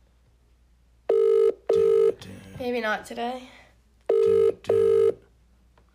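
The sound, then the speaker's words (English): A phone ringback tone sounds in two double bursts as a call is placed, each pair of steady electronic tones separated by a pause, with a short stretch of talk in between. The rings are loud. “It went from calling to ringing, so we thought we were getting him.”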